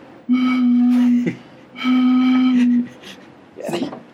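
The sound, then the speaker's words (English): Two long, loud blasts of a low boat horn, each steady for about a second with a short gap between, signalling that the boat is getting ready to depart, followed by a brief voice. “Yeah, you can hear the boat signal and we're getting ready to go.”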